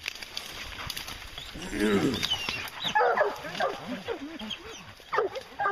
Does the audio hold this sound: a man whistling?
no